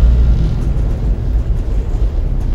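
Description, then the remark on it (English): A continuous, heavy roar of rocket engines at the liftoff of USS Hope, deep and rumbling with a rough crackling texture, staying loud and steady throughout with no voices. “Boost ignition. All engines running.”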